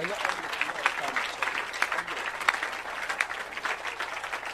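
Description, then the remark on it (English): An audience claps hands to thank God in a dense, continuous stream of overlapping claps, steady and fairly loud throughout, with faint voices mixed underneath. “Clap your hands and thank God.”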